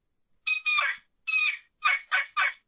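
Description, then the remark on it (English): A turkey call played on a sassafras rail, heard over a cell phone, gives six raspy, high-pitched yelps, first in two short pairs and then a quick run of three, with no talking. “And then finally, the last one we have is a sassafras rail.”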